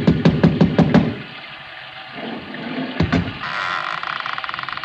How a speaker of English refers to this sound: I lifted the bronze idol and rapped on the door with it, and the voices stopped.